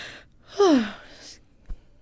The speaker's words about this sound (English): Excuse me? Do you say excuse me after a yawn? I don't know.